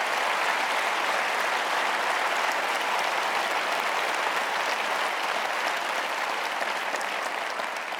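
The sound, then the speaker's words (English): A crowd applauds steadily for several seconds, a dense wash of many hands clapping at once, loud and sustained from start to finish with no voices standing out. “If you're gonna applaud Hope, applaud for that kind of light that shines into the darkness.”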